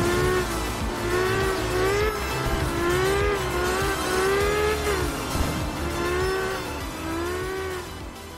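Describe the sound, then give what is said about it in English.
A rally car engine in a trailer for the upcoming minimalist indie rally game Art of Rally, by developer Fun Selector, revs hard over and over, its buzzy tone climbing and dropping in repeated waves above a steady low rumble, loud and continuous. “it's a sort of minimalist indie rally game that's doing things a little bit different”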